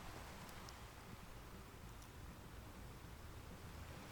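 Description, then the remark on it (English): Gentle waves wash softly against a shore in a steady, continuous, quiet hiss, with no clear breaks between swells and no voices. “And the day unfolds ahead of you in a sense of timelessness, here in your healing place, as the waves lap rhythmically on the shore.”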